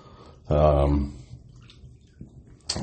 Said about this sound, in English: you can hear the water sloshing around a little bit. And yeah, it is water. I am in the bathtub. Because I am fucking sore. So I'm having a cooler and a nice hot bath